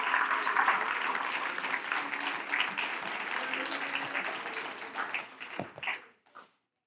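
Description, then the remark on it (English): An audience claps together to thank the Lord in a dense, steady burst of applause that holds for about six seconds, then thins out and fades, with a few scattered final claps. “If you believe that, would you clap your hands and thank the Lord right now?”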